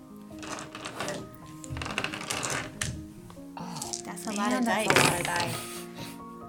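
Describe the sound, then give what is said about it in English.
A handful of dice clatters and rattles across a hard surface in a busy, uneven burst of small clicks, with voices talking over the noise. “A lot of dice.”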